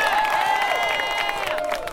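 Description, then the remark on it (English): A crowd of spectators at an outdoor show cheers loudly and steadily for two seconds to get the performers going, a dense wash of shouts and high whoops with scattered clapping, the noise holding at full strength throughout. “Let's make some noise out there. Come on, get these guys going.”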